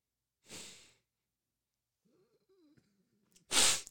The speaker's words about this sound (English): Why are you breathing so hard? Wait, what? Are you okay? What happened? You're just breathing really hard.